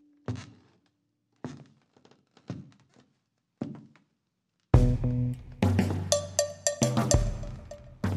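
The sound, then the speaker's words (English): Four slow, evenly spaced footsteps of a man who rose from his chair and walks toward a newt thud heavily against silence in a quiet room, each a dull knock with a short tail, before loud, sustained music with steady tones abruptly takes over. “I heard each footstep as he approached the newt.”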